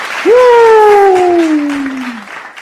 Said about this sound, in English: Round of applause for the New York Giants being trash.